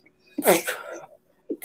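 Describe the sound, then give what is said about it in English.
A single sharp, fairly loud sneeze, with a short breathy intake leading into the burst; a voice starts up briefly right after. “Okay, well, God bless you”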